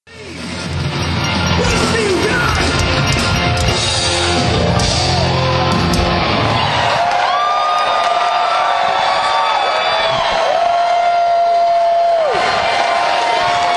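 A loud concert crowd roars and cheers without pause at the end of the night's set, and partway through, long shrill whistles ring out over the sustained noise of the fans.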